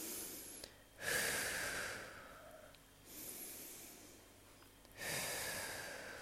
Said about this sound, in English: And imagine just breathing like this, like a wave.